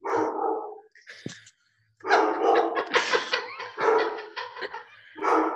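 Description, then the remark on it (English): A dog barks repeatedly in the background, in a rapid run of sharp, yappy barks after a brief pause, with a few higher whiny yips mixed in. “She just kind of stares at them and hears a dog barking in the background and wonders where Kevin got a dog.”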